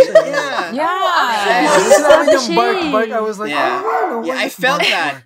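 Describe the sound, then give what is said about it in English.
A dog barks and yips, its loud, pitch-sliding vocalizations running almost continuously for several seconds, with people's voices mixed in. “No, like yeah, bark.”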